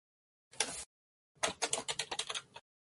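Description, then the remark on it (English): A short burst of keyboard typing, a pause, then a longer run of rapid, uneven key clicks, with no voices. “Yeah, I was in the process of typing, but yes, this is just you three at this point.”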